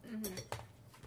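Dishes and cutlery clink and clatter in a short burst of sharp, bright knocks as plates and utensils are loaded into a dishwasher, with faint murmuring underneath.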